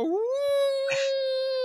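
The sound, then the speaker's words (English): A woman's voice imitating a howl: one long, sustained note that swoops up at the start, then holds steady and loud for over a second, with a brief breathy rasp partway through. “I mean, her howl is just awful, isn't it?”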